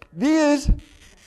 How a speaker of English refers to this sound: You know what this is? No, what is this? It's a glass cutter. Listen.